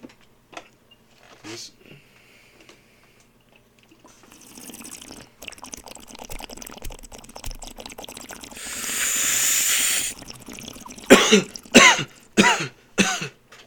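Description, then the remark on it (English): Bubbling water gurgles steadily in a bong for several seconds as someone takes a hit, then a long breathy rush of air, followed by four harsh coughs in a quick series. “That was bong good.”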